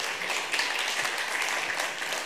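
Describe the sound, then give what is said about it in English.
A crowd applauds actors steadily, many hands clapping in a dense, even wash of sound that holds at a constant level throughout, with no voices breaking through. “So, give a round of applause to our other actors.”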